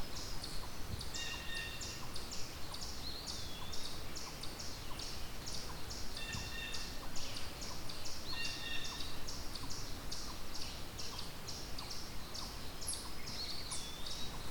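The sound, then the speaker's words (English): A yellow-billed cuckoo calls in a long, steady run of rapid, hollow knocking notes over a constant outdoor hiss, and no one speaks. “A yellow-billed cuckoo.”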